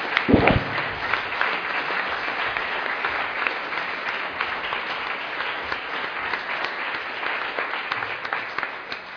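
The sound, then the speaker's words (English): An audience breaks into sustained applause welcoming a speaker, steady dense clapping that carries on for several seconds without any voices over it. “Can you please welcome an eminent applause?”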